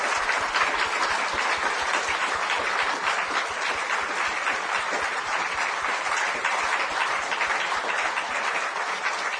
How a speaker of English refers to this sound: Well, before we go on to questions from the audience, can we have a round of applause for that really beautiful insight